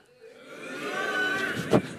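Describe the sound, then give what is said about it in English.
An audience, asked for its loudest boo during an interactive telling of the story of Esther, boos together, the sound swelling from a quiet start into a sustained, loud, droning chorus of voices, with a brief sharper burst just before it ends. “Let me hear your loudest, scariest, passionate boo.”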